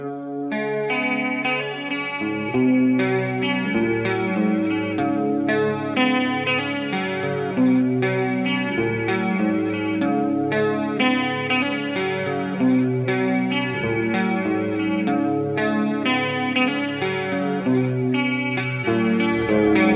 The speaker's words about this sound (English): Actually, one of them has a humbucker and it's tuned to E flat. Mm. And that's the one I picked out now. So here we go. The reverb on.